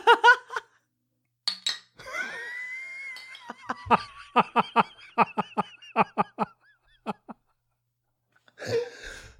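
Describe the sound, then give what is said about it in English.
Glasses clink together repeatedly in a toast, about a dozen sharp bright taps with a lingering high ring, fairly loud. Brief voices come before and after the clinking. “Just cheers okay.”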